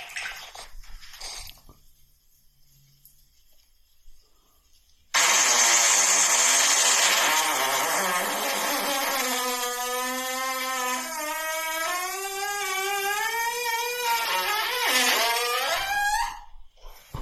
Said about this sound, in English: Different tone. Starts off deep, gets high. And that, you think it should have been 5 seconds less. A normal, like a good fart would be 5 seconds less than that.